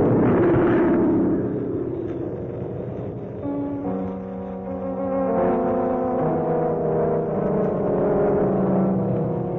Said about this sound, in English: She exploded in midair and now she's falling!